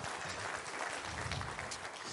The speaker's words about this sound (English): Round of applause